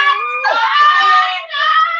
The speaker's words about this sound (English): God, it's noisy. How's your hangover in with all the shrieking?